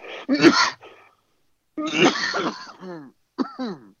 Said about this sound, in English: God, if I tried to mimic your coughing, I would legit start like throwing up on my own, because that shit's gnarly.